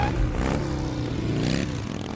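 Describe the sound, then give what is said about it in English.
A motorcycle engine revs up, a loud, throaty rumble that surges a couple of times over a steady growl, with no voices present. “Motorcycles. There is something about motorcycles.”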